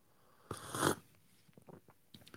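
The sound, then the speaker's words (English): Someone sips steaming, too-hot coffee poured straight from the coffee pot: an airy slurp, one quick pull lasting about half a second, followed by soft mouth clicks and quiet swallowing sounds. “This is right out of the coffee pot.”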